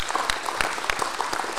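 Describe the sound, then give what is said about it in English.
A crowd applauds steadily, with dense overlapping hand claps at a lively, even level and a few sharper claps standing out. No one is speaking. “So one round of applause for him, please.”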